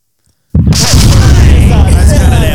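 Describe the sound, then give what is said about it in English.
After a brief silence, a cannon fires with a sudden, loud boom, followed by a heavy, sustained rumbling roar that fills the rest of the moment. “Just a quick cannon because I'm actually pretty happy this week.”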